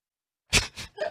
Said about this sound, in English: Oh, we had a live mic. I think it was just your cough. Oh, just my cough.